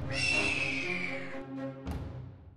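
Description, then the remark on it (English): A Harpy, a half-bird, half-woman creature circling above sailors, lets out a sharp, high-pitched cackling cry that rises suddenly and holds with a shrill, slightly wavering tone before trailing off, followed by a brief harsh burst, loud and alone with no talking. “Suddenly, one of the creatures let out a sharp, cackling cry.”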